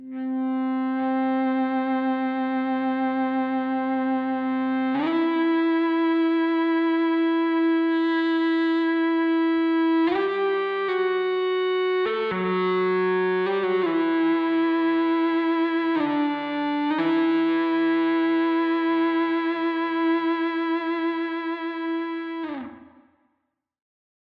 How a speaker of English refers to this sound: Next, I added a lead guitar part played with an Ebow. This is a little device that makes the guitar strings vibrate without actually touching them, giving it a little bit of a sound similar to violin or cello. Here's what it sounds like.